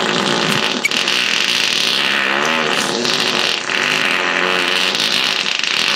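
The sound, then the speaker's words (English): A loud, drawn-out farting sound plays back continuously for several seconds, buzzing and raspy with a wavering pitch, heard on its own without any talking. “She loves fart humor.”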